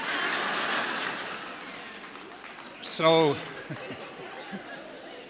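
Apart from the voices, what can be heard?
audience clapping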